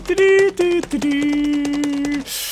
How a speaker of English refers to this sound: Let's see what else we got. Keyboard clicking.